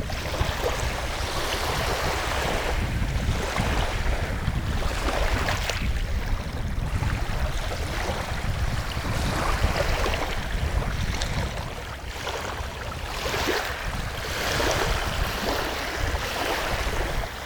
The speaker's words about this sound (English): Just bring the whole scene into your mind for a moment as you listen to the waves.